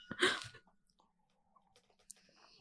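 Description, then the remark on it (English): Glasses of Crémant de Loire sparkling wine clink together in a toast: a loud, bright clatter at first, then a quieter sharp clink whose high ring lingers briefly. No one speaks. “You're really aggressive with the cheers. Are you just trying to make the sound like hit the microphone?”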